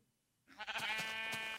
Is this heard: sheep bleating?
yes